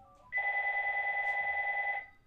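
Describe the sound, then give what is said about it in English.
A single loud burst of telephone ringing, a steady warbling electronic tone lasting under two seconds, with no talking over it. “Sorry, I gotta stick this phone.”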